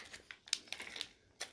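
Faint, wet slurping through a straw from a Capri Sun drink pouch, a handful of short, hissy bursts with crinkly plastic edges, irregularly spaced, with no voices.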